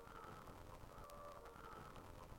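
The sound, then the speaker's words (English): Eerie, hollow bird calls in a video game hang quietly over a steady ambient drone, with a sharper chirp standing out midway through and no one talking. “Spooky birds.”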